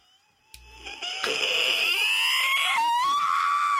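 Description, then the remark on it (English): A girl's high, wavering scream rises and swells steadily louder over several seconds as she sprints toward the people recording, with no other voices present. “And it was this girl screaming and approaching and us and sprinting from and sprinting, and sprinting at us.”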